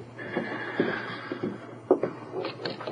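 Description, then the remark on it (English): A door opens: a drawn-out creak followed by a few sharp latch clicks and knocks, with no voices. “He took a heavy book from a table and opened the door.”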